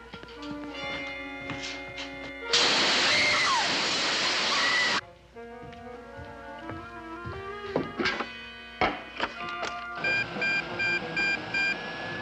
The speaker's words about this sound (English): We're getting a continuous signal from that special alarm system that you told us to install. Good. It's working,